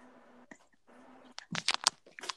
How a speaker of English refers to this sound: Who is crunching?